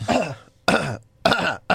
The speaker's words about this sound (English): What was that about? Clearing my throat. Did it really have to be on mic? I didn't turn it off. My bad.